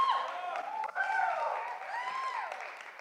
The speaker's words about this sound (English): Well, those who don't know, they're like, why are they hooting and hollering? This is crazy.